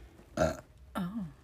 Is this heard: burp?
yes